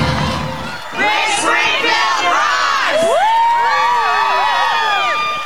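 A concert crowd cheers and screams loudly and continuously, with high-pitched shrieks and whoops rising over a dense roar of voices.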